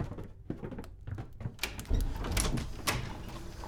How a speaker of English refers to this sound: As the bell sounded the hour, there came a knocking at the street door. I went down to open it with a light heart, for what had I now to fear?